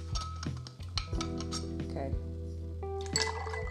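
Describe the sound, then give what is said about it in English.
Regular milk is poured into a glass for a homemade smoothie with a steady gurgle, broken by a few sharp clinks of glass and kitchenware over a low background hum. “You know, I got the almond milk, then I'm going to put regular milk too. I make my own smoothies, y'all. Okay. So I'm going to put some of that in my glass as well.”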